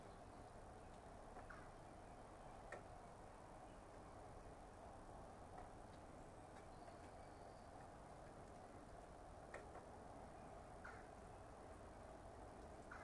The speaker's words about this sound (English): I can hear some kind of road noise in the background.